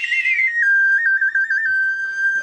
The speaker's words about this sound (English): We're actually only doing answers in whistle form only, so you are all set.